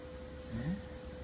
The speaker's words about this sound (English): Oh, his tail's right between his legs. Mm-hmm. He's purring.